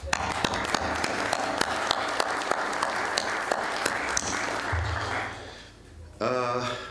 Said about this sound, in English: please share your big applause to Mr. Bournozzi and to the team of Capital Link Forum that they organized this forum in Greece.